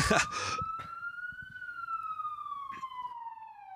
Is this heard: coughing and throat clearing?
no